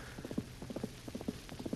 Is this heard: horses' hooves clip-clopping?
yes